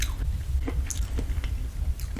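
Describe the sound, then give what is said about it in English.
Wet chewing and slurping of glass noodles by a woman, with soft squishy mouth sounds and brief sharper smacks scattered irregularly over a low background rumble; no one speaks. “Don't slurp!”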